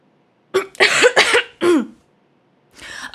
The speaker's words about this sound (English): Yeah, as you are coughing, … is also coughing.